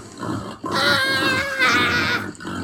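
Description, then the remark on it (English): Pigs grunt and squeal in a loud cluster on the pig-infested property of Zeke Gibbons, two long harmonic squeals rising over a rough, continuous bed of lower grunting, with no talking. “Behind enemy lines, on the pig-infested property of one Zeke Gibbons.”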